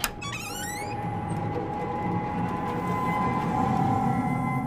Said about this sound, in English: The door creaks open, and you can see that kind of like yellow, dingy.